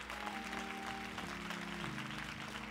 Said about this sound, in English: I'm gonna make everybody clap for that.